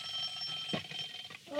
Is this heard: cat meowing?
no